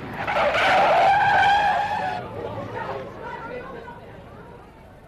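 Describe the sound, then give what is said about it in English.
A car's tires let out a loud, sustained screech as it skids and brakes hard for about two seconds when a man runs straight into its path, then the sound trails off under faint, indistinct background voices. “look out! The car!”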